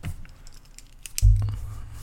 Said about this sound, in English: Clicking that pen.